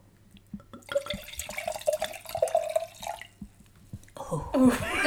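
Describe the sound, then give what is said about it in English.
Wine glugs and splashes into a glass for a few seconds, its pitch rising as the glass fills, followed by a brief louder clatter near the end. “Do you want some more wine?”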